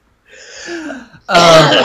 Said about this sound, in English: I don't have corona, I just have a really bad cough.